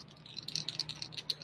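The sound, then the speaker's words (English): Dice rattle and clatter in a quick, uneven run of small bright clicks, fairly quiet, with no voices over them; the dice are rolled for a Dex skill check to pickpocket a guard. “Well, 6, 7, 8, 9, 10, plus I got a 1 on the not-so-cool die.”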